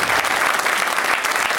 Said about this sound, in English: Finally, after all these years, I got some applause.